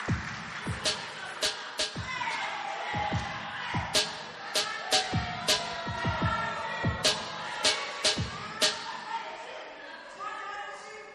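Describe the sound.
Congregation applause as a woman comes up to minister with her testimony: sharp, scattered claps landing irregularly over roughly eleven seconds, each loud crack standing out above a steady murmur of crowd voices.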